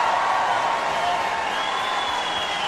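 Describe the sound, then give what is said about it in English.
A large crowd roars and cheers in a steady, dense wash of noise that holds at the same level for a few seconds, with no single voice standing out. “And the crowd roars.”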